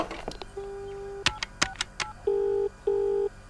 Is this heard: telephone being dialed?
yes